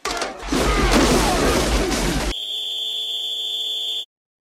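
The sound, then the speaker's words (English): A loud, noisy crashing burst gives way to a single sustained, high-pitched whistle blast signalling the start, lasting nearly two seconds before it cuts off abruptly. “Start on the whistle, end on the buzzer.”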